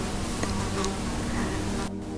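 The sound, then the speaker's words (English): A housefly buzzes steadily around a room, its droning hum wavering slightly in pitch as it circles, with no voices present throughout the short stretch. “Not sure if you can hear the fly buzzing around my room.”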